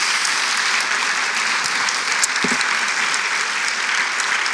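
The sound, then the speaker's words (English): An audience claps steadily to thank a speaker, a dense, continuous wash of applause, loud and even throughout with no voices rising above it. “Can we give her a round of applause and say thank you?”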